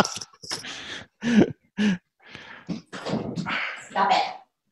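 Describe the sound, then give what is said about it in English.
An anxious labradoodle dog barks in a few short, sharp bursts, mixed with muffled voices and rustling movement. “Let me get my dog to stop barking.”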